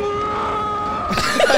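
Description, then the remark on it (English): The doll character Chucky screams in a film, a thin, strained sustained cry that breaks into a louder, harsher shriek near the end, without talk over it. “His screams are the best, bro.”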